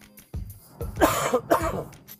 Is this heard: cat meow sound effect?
no